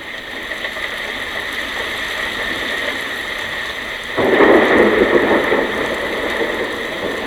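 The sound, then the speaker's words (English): Steady hissing rain falls throughout, then a louder, deeper rumble like thunder swells in about halfway and lingers to the end. No voices. “It sounds so much like rain, doesn't it?”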